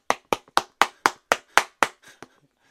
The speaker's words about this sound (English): Why don't you do the welcome clap? Do what? No, come on, put some oof into it.